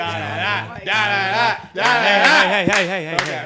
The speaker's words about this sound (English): Some light unison cheering. In our little, like, yes, everyone, light unison cheering.